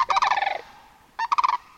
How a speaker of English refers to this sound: Others follow them now, flight upon flight, their great wings hush-shushing and the snow geese among them warbling.